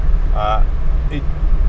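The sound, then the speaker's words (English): A steady, low road-and-engine rumble from inside a car with stock exhaust cruising on the highway at about 65 miles per hour, with two brief voice fragments breaking in over the drone. “The engine is pretty quiet. The car's really quiet.”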